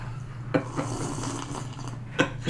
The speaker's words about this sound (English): You really had to slurp it. Yeah, it's good.